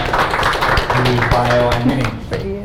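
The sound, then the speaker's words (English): Steady applause from an audience, a dense crackle of many hands clapping at full volume, with some voices rising faintly through it before it begins to taper off. “Everyone give a round of applause to everyone.”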